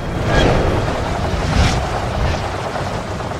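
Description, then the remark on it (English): A loud, roaring rush of wind from a giant magical fan blasts the side of the sails of Steelbeard's ship. It sweeps steadily through, swelling in two strong surges, with a low rumbling churn underneath as the ship is rocked violently to the side. No voices. “It quickly grows into a giant magical fan and blasts the side of Steelbeard's sails with a mighty gust of wind, rocking him violently to the side.”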